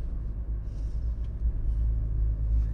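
Steady low engine drone and road rumble inside a moving car, continuous and fairly loud, with faint higher hiss drifting in and out and no voices.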